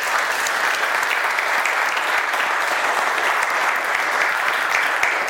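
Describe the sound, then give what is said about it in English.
An audience applauds a couple at their 95th and 97th birthday celebration after worship. The clapping is a dense, even wash that holds at a constant loud level for the whole stretch, with no voices rising above it. “Let's just give them another round of applause.”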